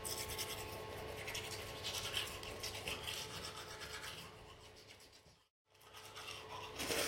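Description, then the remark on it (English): Steady scrubbing of a cheap toothbrush with a brittle handle and weak bristles against teeth, a dense bristly rasp that carries on for several seconds, breaks off briefly, then starts again. No one speaks. “Time for the scrappy underdog. David and Goliath. Toothbrush versus tooth is teeth.”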